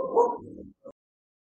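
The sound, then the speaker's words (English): A dog named Scamp whimpers: one drawn-out, wavering whine that fades, followed after a brief pause by a short, soft squeak, with no one talking. “Scamp is still crying and Beowulf got a toy.”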